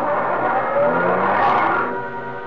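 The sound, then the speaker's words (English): A waiting car on a road revs its engine and pulls away after people get in, its broad mechanical roar swelling briefly before easing off as it moves off. No voices. “Then we turned toward the road, got into a car that was waiting for us.”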